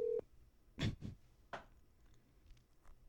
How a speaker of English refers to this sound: All right, so now we're gonna call …. I guess technically it would be ….